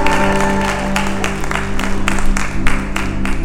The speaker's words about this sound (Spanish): Un aplauso a los guapos y elegantes.